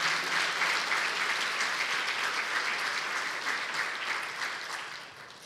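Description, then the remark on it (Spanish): An audience gives a loud round of applause to the Lord, a dense, steady wash of many hands clapping that holds strong throughout before easing off slightly at the very end. “Si lo quieres, dar un aplauso fuerte, Señor.”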